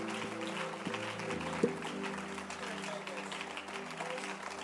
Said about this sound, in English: to your feet and clap your hands and let's appreciate God for this deliverance. As you are clapping your hands, you will also experience the same deliverance. Keep clapping your hands.